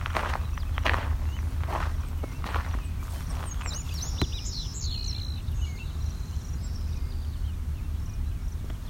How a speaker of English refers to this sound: Some Savannah sparrows over here. I'll point this out.